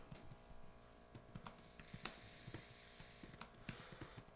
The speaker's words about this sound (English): I'm typing right now. So I'm going to read this back in real time. So it's thinking.